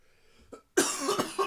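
A person coughs close by: a brief, faint hack, then a short pause and a loud, raspy burst of several coughs in quick succession. No one speaks.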